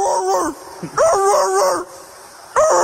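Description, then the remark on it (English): A person mimics a barking dog with three loud, drawn-out, howly woofs in quick succession, separated by brief pauses. “No, that sounds like Scooby Doo. You need to be vicious.”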